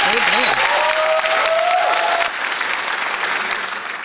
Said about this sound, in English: Audience, round of applause.